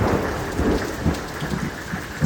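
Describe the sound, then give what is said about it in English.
A thunder crack rumbles through a steady downpour in a storm ahead of a hurricane, low booming swells rolling under the constant hiss of heavy rain on surfaces, loud with no voices. “And thunder cracks behind me.”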